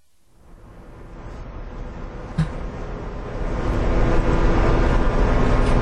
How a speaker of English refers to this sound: Very quiet, very solemn. It's almost hard to believe with all the vehicles with their engines running, with all the thousands of folks that are standing there, that you can hear the wind. The wind blowing on a mild February evening.